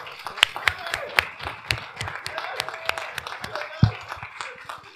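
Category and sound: crowd, audience applause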